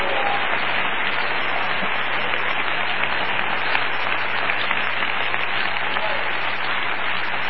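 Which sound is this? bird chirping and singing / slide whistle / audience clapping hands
audience clapping hands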